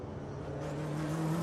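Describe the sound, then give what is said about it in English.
The engine of the number 01 Cadillac race car, with a yellow front, hums steadily as it goes out on track, its tone rising slightly as it builds speed and grows a little louder; no one speaks. “Last two cars that are the only car we hadn't seen, the 01 Cadillac going out.”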